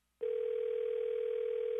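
A telephone dial tone cuts in abruptly after a brief moment of quiet as a call is hung up, and holds as a steady, unbroken hum at an even, fairly loud level, with no voices.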